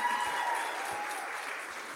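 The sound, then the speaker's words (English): Steady applause from an audience welcoming a keynote speaker, a dense wash of many hands clapping at an even, fairly loud level throughout, with no voices standing out. “I have a few things to say about him though, but clap away.”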